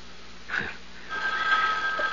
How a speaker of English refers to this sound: Well, Mrs. Greenway, aren't you going to answer it? Answer? The phone.